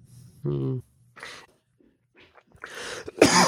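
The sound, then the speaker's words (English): A loud cough blasts right into the microphone at the very end, preceded by a few short vocal noises and breaths with quiet gaps between them. “Yeah, I'll just cough down the mic.”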